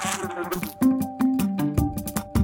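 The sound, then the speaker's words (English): A fly buzzes around, its droning whine rising and falling in pitch with brief dips as it circles around. No voices are present. “You hear that? A fly is buzzing around.”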